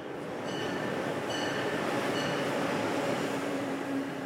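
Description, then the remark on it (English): A steady, continuous rumble of an Amtrak Excella high-speed passenger train in motion, heard from inside with no voices, with faint high-pitched whines rising briefly every second or so above the constant roar. “I chatted with a passenger in the dining car.”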